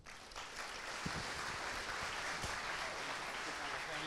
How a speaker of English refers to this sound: Come on, let's give Chicago one more round of applause.